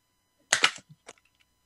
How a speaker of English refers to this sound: So knock, knock, knock, clear the cards. And I am just going to shuffle real quick and see what Spirit has to say.